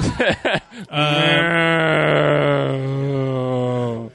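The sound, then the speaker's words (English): A comedy show audience lets out a long, low, drawn-out groan that sounds like mooing cows, sustained for about three seconds after a few short vocal bursts, with no talking. “A bunch of sad cows, it sounded like.”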